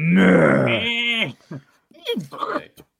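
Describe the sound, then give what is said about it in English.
A person imitates a camel with a long, loud, throaty groan that bends in pitch, followed by a few shorter guttural grunting noises. “What do camels sound like?”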